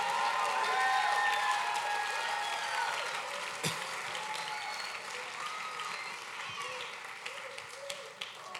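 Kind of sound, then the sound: crowd, audience hand clapping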